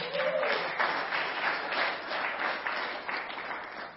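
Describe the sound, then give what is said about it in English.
A crowd applauds steadily, a dense wash of many hands clapping at an even, sustained level for the full length with no voices rising above it. “Let's give Cole a round of applause.”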